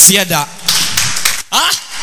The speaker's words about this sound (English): One Christian is clapping. There's one Christian here, he's clapping.